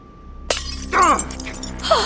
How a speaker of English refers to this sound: Your hand! You broke your glass!